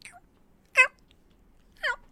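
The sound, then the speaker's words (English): Two clear meows from a male cat about a second apart, each short and harmonic with a slightly falling pitch, heard against a quiet background with a faint chirp at the start. “Y'all heard her meowing at the door before I got up to let her out, and then he came out and came over and shouted at me.”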